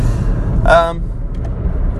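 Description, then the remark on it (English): A steady low rumble fills a car interior throughout, with a brief voiced sound rising over it near the start and faint higher clicks afterward. “I'm in my car. Yes, I'm in my car.”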